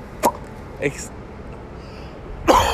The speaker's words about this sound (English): Would not be an episode without me coughing, would it?